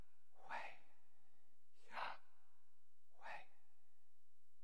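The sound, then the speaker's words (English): Three slow, soft breaths, evenly spaced about a second and a half apart, each an airy whoosh in or out, quiet, with silence between them and no talking; the breath stands for the name of God, Yahweh, which in the Hebrew tradition is breathed rather than spoken. “We don't speak the word of God in the Hebrew tradition. We simply breathe, and God is brought in and then shared with the world.”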